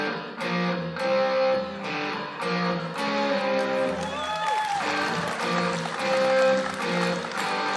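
A loud electric guitar plays a riff through heavy distortion, with gritty sustained chords and rhythmic strummed attacks repeating steadily throughout, full-sounding.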